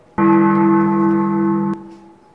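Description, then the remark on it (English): A single loud, steady bell tone with a rich, low-pitched hum sounds for about a second and a half, then stops abruptly, leaving a faint lingering ring. “Where did that bell come from? There's way too many bells in this place, all right?”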